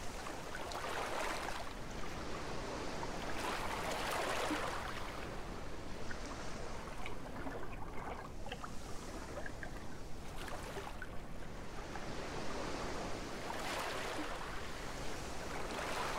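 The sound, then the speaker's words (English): Ocean waves wash steadily onto a beach, a continuous rushing hiss that swells every few seconds as each wave breaks and retreats. No voices, just the surf filling the scene. “The waves have washed the beach clean of any sign that we were there.”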